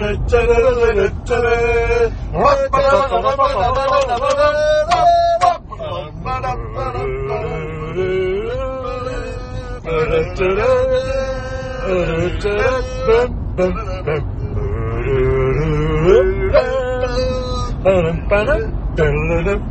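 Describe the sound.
Inside a moving car on the way back after a 3-0 Albion win: a steady low engine and road rumble runs throughout, with several people talking loudly over it.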